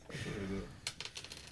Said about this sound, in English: What are you doing to these dice? He's smushing his face in the soundboard to pick up his die.